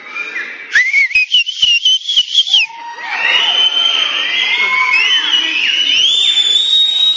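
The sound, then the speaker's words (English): A crowd of people whistle together, many overlapping shrill tones rising and sliding, first in short choppy bursts and then a sustained, dense wash of whistles from a large audience. “Can anybody in here whistle? That's not a whistle.”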